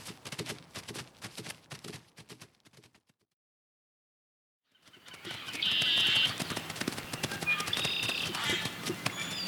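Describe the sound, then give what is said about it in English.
A limping horse's hooves clip-clop in a steady rhythm, stop briefly, then resume louder over busier outdoor ambience, with bird chirps. “His horse is limping now. He's headed towards the old Buckner place. Let's get over there.”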